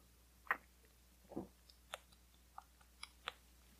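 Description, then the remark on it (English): Quiet sipping of a cold, fizzy peach mango flavored water: a soft swallow near the middle, surrounded by scattered small wet clicks and lip smacks, with no talking. “Let me drink a water first.”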